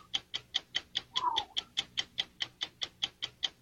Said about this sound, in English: Let's put 60 seconds on the clock and go.